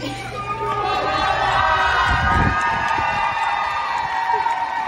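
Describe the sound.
A crowd cheers and whoops continuously as a man who has completed his 12th round of chemotherapy exits a healthcare facility and is met with applause, cheers, handmade posters and hugs; dense overlapping voices shout excitedly with a steady roar of noise throughout, and applause may be mixed into the din.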